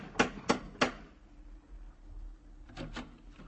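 Three sharp, evenly spaced metallic knocks from a brass lion door knocker on a brownstone on 93rd Street, followed after a pause by three softer, quicker raps. No voices.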